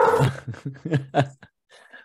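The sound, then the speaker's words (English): A dog barks in a quick run of five or six fairly loud yaps, then goes quiet apart from a faint, muffled noise at the end. “Chad, you got the dog, so we'll wait a second.”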